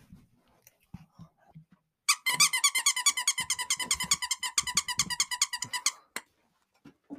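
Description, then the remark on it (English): A ginger pup yappuccino squeaky dog toy from a Christmas stocking squeaks rapidly and loudly for about four seconds, a fast run of sharp, high-pitched squeals, with a few soft bumps and rustles before and after. “Yeah, it's a squeaky toy.”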